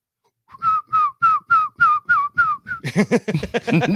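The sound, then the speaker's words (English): Someone whistles a short tune, about eight clear, evenly spaced notes with a slight downward slide, then the whistle breaks into a louder, rougher, breathy burst at the end. “Same whistle?”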